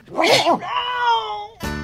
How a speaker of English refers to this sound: That was a moment with Bean. Just his, that's just the way he sneezes. It's for real, and it is awesome.